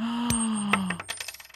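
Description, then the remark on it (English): Three coins are flipped and clatter onto a hard surface with bright metallic rings, then a quickening flurry of small clicks as they wobble and settle. Fairly loud, no voices. “I'm going to try to flip some coins.”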